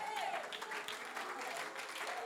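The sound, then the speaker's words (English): An audience claps steadily, a dense, continuous patter of many hands filling the whole clip, with a faint voice rising briefly above the applause at the start. “Come on, get some persuasion in your clap.”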